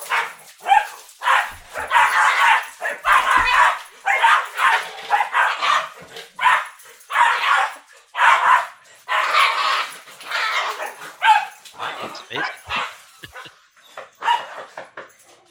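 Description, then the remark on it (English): A dog barks and whines in quick, uneven bursts for about fifteen seconds, excited yips mixed with higher whimpering cries, fairly loud with only brief pauses between outbursts. “He's gone to the dog.”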